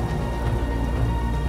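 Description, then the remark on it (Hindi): Steady rain falls at night in a continuous, dense wash with a deep low rumble underneath, holding an even loudness throughout, and no voices are heard. “जब बारिश थमी ही नहीं तो वो अंदर चला गया।”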